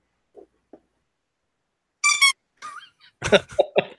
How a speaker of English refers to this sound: Yeah, I did not realize the Tara Reid shark squeaked. It does.